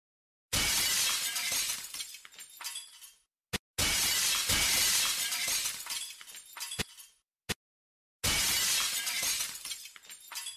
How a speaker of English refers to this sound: Virat pulled a steel pipe from the median and smashed in the glass of the lady's imported car.